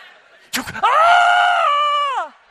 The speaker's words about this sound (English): He's screaming all the way down. I always think my hands are going to hit the thing, right?